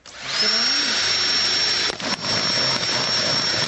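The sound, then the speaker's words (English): A power drill whirs up to a loud, steady high-pitched whine as it bores a hole about 5 to 6 millimetres across through the side of a plastic bottle, very close to its base, with a brief dip in pitch partway through before carrying on. “So Dave's basically whacked his drill straight through the bottom of that bottle.”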